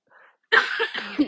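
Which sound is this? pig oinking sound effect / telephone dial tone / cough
cough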